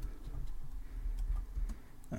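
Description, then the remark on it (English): Soft, irregular clicking of keys on a computer keyboard as someone types quickly to look something up, quick taps scattered across the moment over a low steady rumble, with no voices. “I'm typing as fast as I can.”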